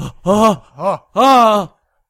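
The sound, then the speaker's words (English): A voice imitates strong, labored gasping: three loud, strained, throaty gasps in quick succession, the last one drawn out longest before silence. “Half an hour later, a strong gasping woke me up.”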